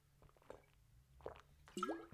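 Quiet wet mouth sounds of someone sipping water: a few soft slurps and gulps spread over two seconds, with no talking.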